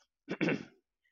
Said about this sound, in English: No, I was trying to clear my throat as well, so I think I decided to stop just because I was getting a bit croaky.